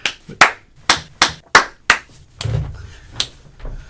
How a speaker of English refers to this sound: She had a super cut of us clapping. Just being like, wait. Ready? Yep.